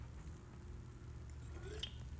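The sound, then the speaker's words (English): Someone takes a quiet sip of a grapefruit drink, with a brief wet slurp near the end over a low, steady background rumble. “It's motherfucking water, boy. Oh, no. This is grapefruit.”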